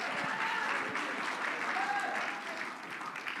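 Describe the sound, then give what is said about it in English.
An audience clapping their hands in a steady, dense wash of applause, with some faint cheering and voices mixed into the noise throughout. “Come on, clap your hands and shout unto God.”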